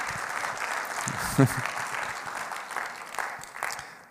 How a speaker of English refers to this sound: Can we give a big applause to the people who are joining us online?